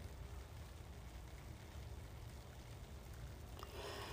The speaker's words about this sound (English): I am in my bath, as usual. Oh, it's not the same bath, but it's warm, and it's got bubbles that you can hear gently popping like rice bubbles in the background.